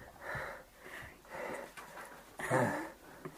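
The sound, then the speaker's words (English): Heavy, breathy gasps repeat in a loose rhythm, four or five rough inhales and exhales, the last one louder and more strained, like someone catching their breath. “Just heavy breathing for 2 seconds.”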